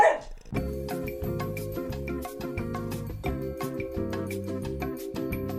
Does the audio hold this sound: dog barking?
yes